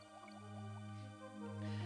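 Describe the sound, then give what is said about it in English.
Calm, flowing synth music from an underwater video game level, with a steady low drone, soft sustained pads and gentle dripping, bubbly notes, heard on its own at moderate volume. “It's a water level. I think you got this. We got aquatic ambiances back.”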